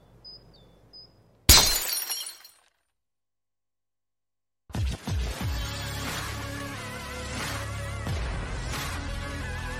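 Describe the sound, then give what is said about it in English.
A glass bottle breaks with a sharp, loud crash of shattering glass, a bright burst of breaking shards that rings out briefly, then silence, followed by dense, busy sound that starts up and continues. “You're telling me that bottle is cut in half?”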